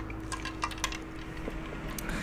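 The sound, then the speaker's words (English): Quiet slurping and liquid gurgles from someone sipping iced coffee, with a few brief sharp clicks like ice shifting, over a steady low hum. No one speaks. “Sip of iced coffee because y'all know my mouth gets dry as fuck when I talk about things like this.”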